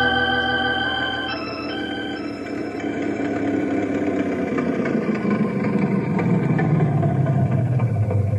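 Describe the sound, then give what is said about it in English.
An old Ford Model A car engine runs steadily, a low chugging rumble with a faint whine that slowly shifts in pitch as it revs. No one speaks. “Your old Model A sounds good as new.”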